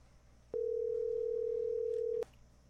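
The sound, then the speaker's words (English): A telephone ringing tone on an outgoing call: one steady, loud electronic burst lasting under two seconds, starting and stopping abruptly against quiet line hiss, with no voices. “We did miss the dial tone.”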